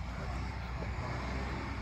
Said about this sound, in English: That truck was offended that we were too close to it.